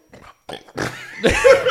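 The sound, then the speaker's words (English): A croaky burp that comes in a few short bursts, growing louder and rougher toward a drawn-out, strained finish, with no talking over it. “That was the most retarded burp ever.”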